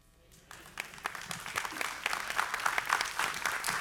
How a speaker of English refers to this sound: That's almost a happy hand clap. Come on, amen, come on.